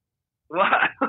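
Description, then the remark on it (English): Someone clears their throat after a brief silence: a rough, rasping rumble followed by a short second burst, heard alone without any talk. “You're fucking sorry, I have to clear my throat.”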